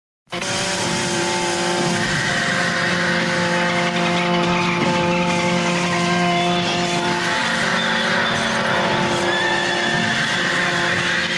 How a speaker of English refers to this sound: And then they escalated it to playing at full volume, up to 11, proverbially Spinal Tap style, at all hours of the night for a house full of children, the sounds of animals being slaughtered, rabbits and horses and dogs.